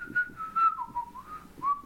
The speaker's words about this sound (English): You know that's from? What I just did? Steamboat Willie. Oh, First ever Mickey Mouse. We talked about this. Yes. I whistle it to myself while I'm working.